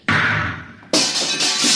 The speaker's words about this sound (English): I'll have to blast the lock.